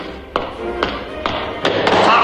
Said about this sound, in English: And then the hyper-stylized heel-clicking manner of British officer step. It's really great.